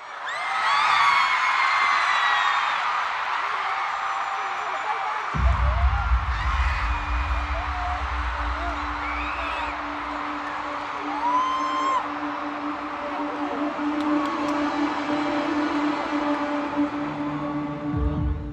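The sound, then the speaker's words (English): A huge stadium crowd roars and screams continuously as the lights turn off for a concert intro, with high whoops cutting through; a few seconds in, deep booming bass and a sustained synth tone from the intro, which runs over a minute, kick in beneath the cheering. “So, as you may have heard, there's the intro. It's over a minute,”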